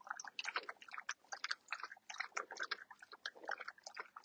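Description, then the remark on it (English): A dog named Wolfie laps water from the channel of a push-button water device, a quick run of wet, slurping tongue strokes repeating in an uneven rhythm for several seconds, fairly quiet with no talking. “And Wolfie can lick it up like it's a little river. Can you hear a lap in it?”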